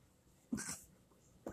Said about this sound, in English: Excuse me, I had to sneeze there.